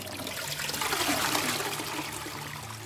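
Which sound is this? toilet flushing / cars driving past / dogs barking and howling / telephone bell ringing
toilet flushing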